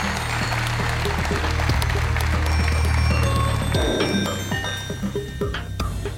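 An audience at the CyberCon conference in Canberra applauds in a dense, steady patter of many hands clapping for about six seconds, with a low droning hum underneath that drops away partway through.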